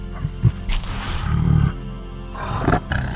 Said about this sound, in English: Wait, is that a tiger? Oh yes, this is my good friend Theodore.